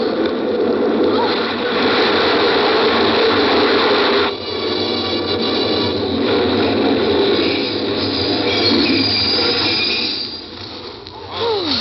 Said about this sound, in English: Oh, the train was in.